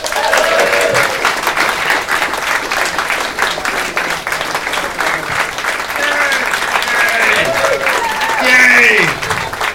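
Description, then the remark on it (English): Sustained audience applause welcoming a comedian to a five-minute stand-up set: a dense, steady wash of many hands clapping at once, with scattered voices and whoops rising through it and a slight swell in volume near the end. “Just keep clapping for 5 minutes.”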